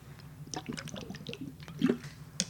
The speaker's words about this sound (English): Sorry, I had to take a swig of water.